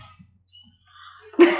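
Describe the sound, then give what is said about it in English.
A single sneeze bursts out suddenly and loudly near the end, a sharp breathy blast after a quiet, faintly breathy lead-in. No one speaks. “God bless you, sir.”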